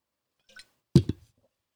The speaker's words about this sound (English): Let's have a drink actually while we're talking about hydrating.